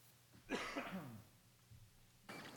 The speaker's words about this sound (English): I'm going to be hopefully fighting this cough. If you hear my teeth clacking, I'm working on a cough drop while I'm preaching this morning, so I apologize for that.